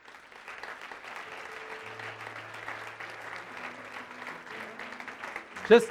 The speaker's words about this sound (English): Just so you know, we're clapping for you. We're clapping for you.